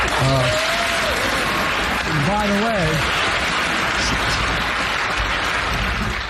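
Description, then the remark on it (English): In a played clip, loud, sustained applause from a large audience applauding the answer that police officers and emergency responders who refuse vaccines should be let go fills the whole stretch, a dense steady wash of clapping, with faint voices and a brief shout or two rising through it early on. “Yeah, and you hear the applause there.”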